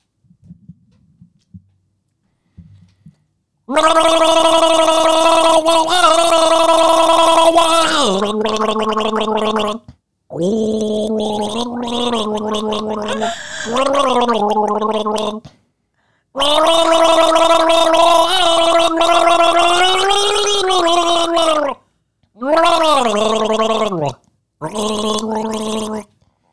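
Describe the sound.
Someone gargles water while humming a recognizable melody, the bubbling voice rising and falling in pitch through several long phrases broken by brief pauses for breath, loud.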